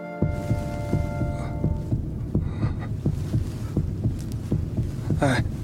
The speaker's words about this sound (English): Your heartbeat is getting me excited, too.